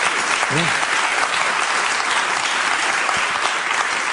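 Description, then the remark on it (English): Steady, dense applause from an audience, a loud continuous wash of many hands clapping with no breaks, a brief voice briefly rising through it early on. “It's not the applause.”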